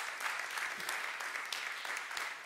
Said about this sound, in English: And I'm standing here to tell you, she did a pretty good job. And my you can clap it up for my mom.